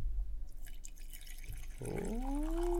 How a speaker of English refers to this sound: I'll get closer to the mic. I want them to hear this. Oh, really? Guys, listen to this coffee pouring.